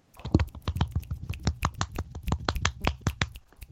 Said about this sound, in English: See, he snaps and I clap because I can't snap my fingers